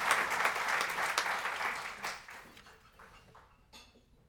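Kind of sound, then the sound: crowd, audience applause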